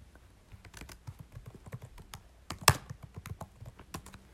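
Rapid, irregular clicking of keys on a computer keyboard as someone looks up positive affirmations, fairly quiet, with one sharper, louder keystroke near the middle; no one speaks.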